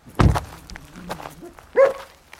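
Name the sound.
dogs barking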